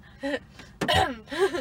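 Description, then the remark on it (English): A person clears their throat a few times, short voiced rasps with one sharper, harder burst in the middle, fairly loud with no talking. “Cough, cough.”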